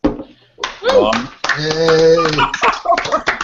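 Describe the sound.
Brief applause with a few people clapping, mixed with loud cheering and whooping voices welcoming a first-time guest, for a few seconds before it tapers off.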